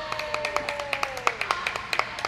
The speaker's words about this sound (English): so he's generating a lot of applause from us. Well, now that he's gotten a lot of applause, he's going to be like, when can I come back?